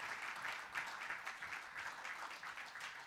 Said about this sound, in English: Clap your hands if you receive the word of God this morning.